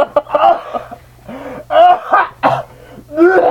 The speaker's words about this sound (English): Oh, God. You gave that cough to me. I did it as a joke, but you gave that cough to me.